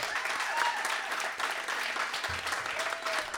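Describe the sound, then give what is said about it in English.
A crowd applauds a singer steadily, a dense wash of clapping hands at an even, fairly loud level throughout, with a few faint voices and whistles mixed into the noise. “Hey, just real quick, give … a round of applause for me, man.”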